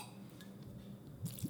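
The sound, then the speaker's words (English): A quick splash of apple cider vinegar being poured into a blender, two short wet bursts near the end after a quiet stretch, fairly soft with no one talking. “And a splash of apple cider vinegar.”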